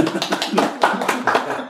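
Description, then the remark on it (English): A crowd applauds together, a dense, steady patter of many hands clapping at once, fairly loud, with no voices standing out. “Let's all clap.”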